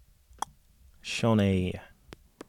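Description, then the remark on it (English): A few sharp, isolated keyboard clicks, sparse, with a short drawn-out vocal sound from a person in the middle between the keystrokes, as someone types into a search. “I was typing in the... In the search”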